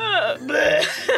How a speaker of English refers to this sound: Like, she just burped and, like, sprinted for the door. Propelled me backwards. Just walking across the football field, like at the end of Breakfast Club, and she just fists in the air. Yeah, fucking burp, baby.